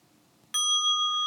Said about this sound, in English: Let's try the bell again.